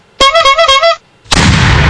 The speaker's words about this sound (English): He comes with an annoying cannon and a horn sound.